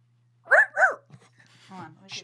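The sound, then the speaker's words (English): A person imitates a little chihuahua with two quick, high-pitched yappy barks, followed by a few soft breathy vocal sounds and a short hiss. “I've got a little chihuahua.”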